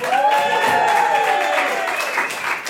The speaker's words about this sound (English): And can I have another cheer, please, ladies and gentlemen